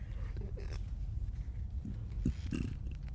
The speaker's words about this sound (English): Definitely since we ate, I'm going to have to burp really quick.